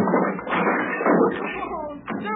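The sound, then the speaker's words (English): A loud crash of a heavy man landing as a frail wooden chair splinters and clatters apart under him, followed by voices reacting over the settling rattle. “Did you hurt yourself? Gee, I forgot how heavy you are, and these chairs so darn frail.”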